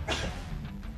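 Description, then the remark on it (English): A single sharp, loud sneeze bursts out at the start, then trails off into a softer breathy hiss. No one speaks. “Bless you.”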